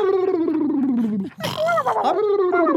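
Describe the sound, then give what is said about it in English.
A voice imitates a cartoonish, old-fashioned 1940s-style snore: a drawn-out droning groan, then a raspy snorting breath that rises into a whistly wheeze and slides back down. “And 1940s snoring.”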